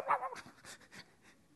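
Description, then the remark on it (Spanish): A voice imitates a dog, starting with a short, tonal bark-like yelp and then about four rhythmic, breathy panting huffs, fairly quiet, with no other talk. “Eres un perro.”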